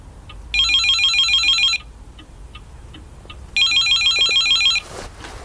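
A telephone rings twice, each electronic trill lasting about a second with a pause between, loud with no one speaking.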